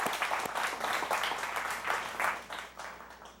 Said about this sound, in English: What a great call. Applause for Eddie.